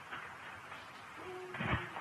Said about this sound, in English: Hello, Sheriff's Office! I hear a dog is howling.